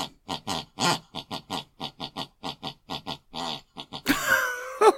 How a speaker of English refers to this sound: I am huddled under my quilt with a large flashlight and a nice cup of tea with tonight's guests, somewhere in the barren wildernesses of the Midwest Plains, with the sound of … snoring distantly from the room next door.